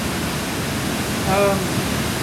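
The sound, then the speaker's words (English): A steady, dense roar of hurricane-force wind blows sideways outside without letup, heard from inside a building underneath a house, with a short high whine rising briefly near the middle of the gust. “That's how it's the wind, blowing sideways. The wind outside. Is blowing crazy.”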